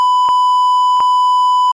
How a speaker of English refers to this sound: Okay, we'll just beep that out again.